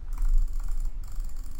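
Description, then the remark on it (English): Rapid jitter clicking of a computer mouse, clicking as fast as possible as practice for Minecraft PvP, a fast, dense stream of small mechanical clicks running continuously with no voices. “So, we do this thing called jitter clicking, and you have to click as fast as possible.”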